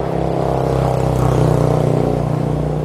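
Steady road traffic noise heard from a sand path leading into woods beside the road: a low rumbling engine drone with a humming tone that holds fairly constant for the whole stretch, like a car rolling past, with no voices.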